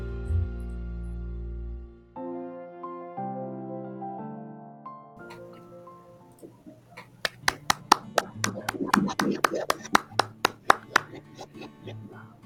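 An audience breaks into applause after a sustained musical intro, with sharp, fairly regular claps building into a dense burst of clapping that carries on to the end.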